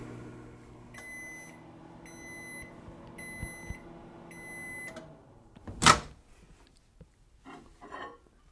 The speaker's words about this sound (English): I guess that makes sense, especially if you're only using it for 1 or 2 minutes at a time. Usually, you know, when I use my microwave oven, maybe 2 minutes at a time, tops.